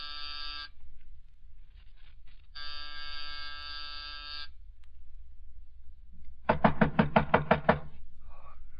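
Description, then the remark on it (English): A buzzing doorbell at an old friend's home sounds twice, close to 5:00, a short buzz and then a longer steady one, followed by a quick burst of about eight loud knocks on a door. No one speaks. “It was close to 5:00 when I rang his doorbell.”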